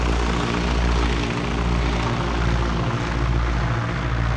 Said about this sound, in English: The Spartan aircraft chugged above the crated rice paddies below, on its way to the relative safety of neighboring Thailand.